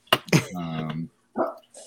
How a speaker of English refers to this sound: I think JoJo's gone. Yeah, he abandoned us. JoJo's dog's trying to take over the podcast right now. Joe, I love your dog, Joe.